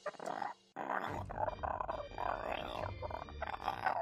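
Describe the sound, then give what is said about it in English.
A voice imitates a guttural zergling noise: a string of raspy, growling grunts and snarls with a brief pause early on, then continuous rough, throaty chatter at moderate loudness. “And then a zergling noise. I said a zergling, not a drone.”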